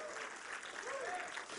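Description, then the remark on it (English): A church audience claps steadily to give praise to Jesus during a sermon, a dense wash of many hands applauding at once, with faint voices mixed in underneath. “Come on, clap your hands and stir me up a little bit.”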